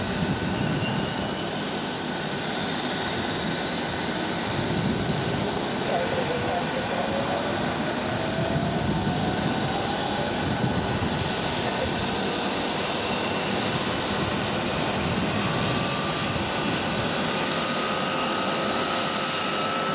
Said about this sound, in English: So here are the sounds of a 757 engine start. You're clear to start, Eastern.